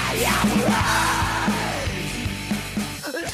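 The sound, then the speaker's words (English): Raw, sustained screamed vocals rise and bend over a loud, dense band with pounding drums at the end of a Christian hardcore song, the strained voice holding long cries before cutting off abruptly near the end. “The screaming at the end reminds me that we're all like toddlers who want to be held and loved.”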